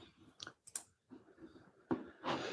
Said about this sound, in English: You can hear like pecking at the keyboard now.